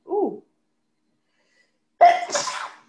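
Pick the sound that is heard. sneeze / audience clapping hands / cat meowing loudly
sneeze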